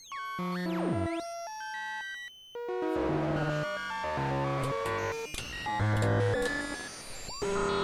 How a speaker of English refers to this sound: And the sine waves was nuts. Yeah, I really like the FM sine wave, like classic.